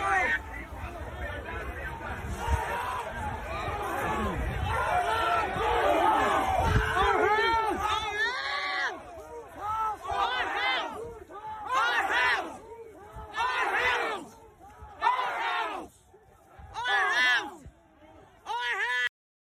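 A large crowd storming the Capitol in Washington, D.C. yells and roars in a dense, continuous wall of shouting, then breaks into repeated rhythmic bursts of chanting-like yells with short gaps between them, loud throughout.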